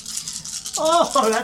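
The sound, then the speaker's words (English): A steady, busy clatter of many dice being shaken and rolled for damage in a tabletop role-playing game fills the first half, then a voice starts talking over the fading rattle. “Oh, that's a lot of dice.”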